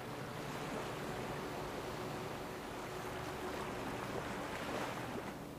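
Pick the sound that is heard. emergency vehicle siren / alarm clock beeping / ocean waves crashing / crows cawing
ocean waves crashing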